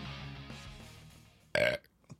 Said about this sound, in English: It wasn't even a good burp. It was a little shitty one.